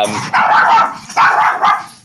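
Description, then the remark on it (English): A dog barks several times in quick succession, loud, with short sharp bursts separated by brief pauses. “We got the dog is now answering.”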